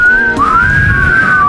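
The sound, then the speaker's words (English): A group of people whistle loudly in unison before taking a shot of drink, one sustained wavering tone that briefly breaks and then glides up and holds, over a low rumble of background noise, with no talking. “Wait, let's all whistle to take the shot.”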